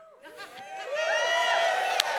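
Half of a room of people, asked to cheer as if the Warriors had just won, breaks into loud cheering, with overlapping whoops, shouts and laughter building over a couple of seconds into a sustained, excited roar.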